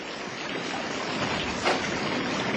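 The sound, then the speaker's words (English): Rushing flood water washing away a building site roars steadily and loudly, a dense, unbroken wash of churning noise with a brief surge partway through and no voices. “It's flood water and it's washing the whole site away.”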